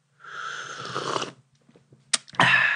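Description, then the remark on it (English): A long, airy slurp of hot tea from a cup, followed after a short pause by a faint click and a second loud, hissing slurp that runs to the end. “And in honor of the early episodes, here's some tea slurping.”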